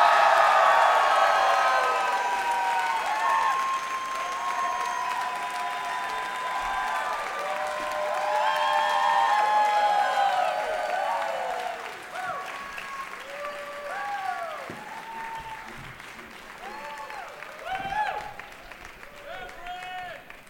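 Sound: audience cheering and applause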